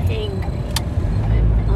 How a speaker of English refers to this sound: That's good, because you're driving the car, so I don't want you being hangry.